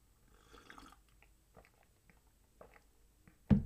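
food or drink, sipping coffee

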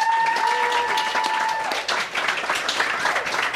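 crowd, audience applause and cheering

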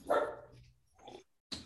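animal, dogs barking

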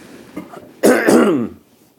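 human body sound, throat clearing

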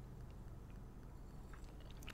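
food or drink, sipping a drink

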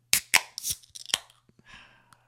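food or drink, cracking open a beer

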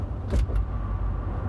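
vehicle, inside a car

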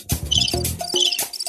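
insect, crickets chirping sound effect

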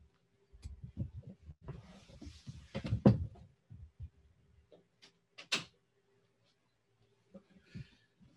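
household object, door being closed

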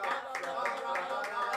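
crowd, audience clapping hands

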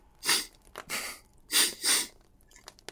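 human body sound, nasal sniff

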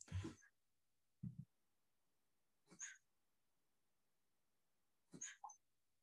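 animal, dog making noises

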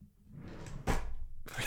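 household object, drawer being opened

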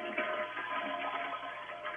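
household object, toilet flushing

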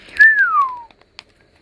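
human body sound, person whistling

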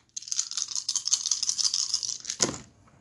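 household object, rolling dice

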